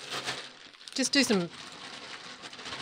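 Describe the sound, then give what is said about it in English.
A bag of kettle chips is shaken and rustled to spread the flavouring, a continuous crinkly, papery noise, with a brief burst of a voice speaking partway through. “Just do some justified rustling. Some sanctioned rustling.”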